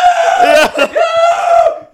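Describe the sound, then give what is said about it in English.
A person imitates the scream of a little dog: a loud, shrill, sustained squeal, briefly breaking midway before continuing and trailing off. “There's one little dog and he goes...”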